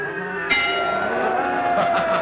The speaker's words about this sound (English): But, oh my God, that guy whose job was just to hammer in those chisels in everybody's head and use the sound effect that you would, like, hear in a Hollywood movie of, you know, railroad workers hammering a nail into the railroad tracks.